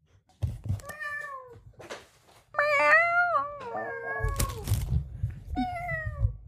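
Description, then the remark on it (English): A human voice imitates a cat, giving about four drawn-out, whiny meows with rising and falling pitch, spaced a second or so apart, over a low rumbling background. “I didn't have the video up, and so I was meowing back at you.”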